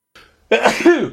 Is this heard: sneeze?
yes